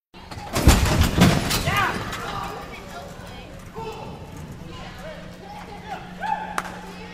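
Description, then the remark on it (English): Ridden rodeo horses burst out of the gate at a rodeo, recorded with a VP88 mid-side microphone right on top of them, with a flurry of loud thuds and pounding hooves in the first second or so, followed by scattered shouting voices over a low, steady hum. “I'll play a couple recordings that I made with it at a rodeo here.”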